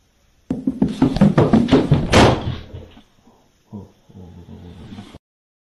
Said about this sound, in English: The staircase goes down to what appears to be a basement, but there's a door on the landing. And as he goes past it to run up the stairs away from whatever is apparently chasing him, the door slams.